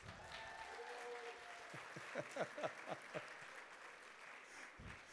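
An audience breaks into applause, a steady wash of clapping with several sharp, close claps standing out in a quick rhythm before the sound fades.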